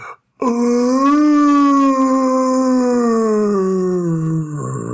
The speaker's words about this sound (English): So this thing sort of stumbles out of the tree line and starts looking around. And then it turns its head up at the full moon and lets out a low moan.